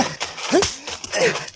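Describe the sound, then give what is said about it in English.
Horse hooves stamp in a few irregular, heavy thuds as a horse steps on a man fallen beneath it, amid a noisy, churning scuffle, with agitated voices rising over the commotion. “Pull him out from under that horse. Pull him out. Come on, he got stepped on. Move that horse.”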